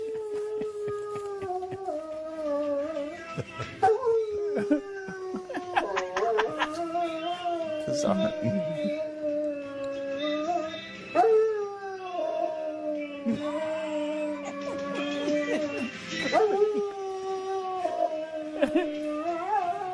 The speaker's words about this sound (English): the dog was taped singing